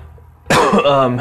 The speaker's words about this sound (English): Like I said, sorry for all the coughing. Just put up with it to the best of your ability, folks.